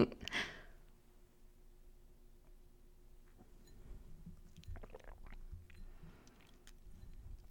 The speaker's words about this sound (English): When I was tasting this, I'll take another taste. I've been sipping it throughout the episode, but just so you guys can hear it.